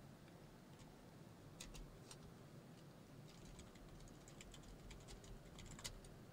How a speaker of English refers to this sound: I'm typing it right now, so y'all bear with me.